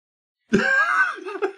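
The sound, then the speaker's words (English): During a tabletop role-playing game, a voice imitates a snake creature laughing at a character who calls for help: a sudden, strained, rasping vocalization with hissy overtones that wavers in pitch and breaks into short choppy pulses toward the end, about a second long. “That is what laughing at snakes sounds like, people.”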